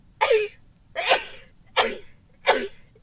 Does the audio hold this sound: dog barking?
no